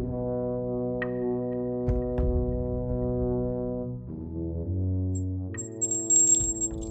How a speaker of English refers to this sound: I replaced the whole noise thing with the bell because I thought it sounded better, but I don't know.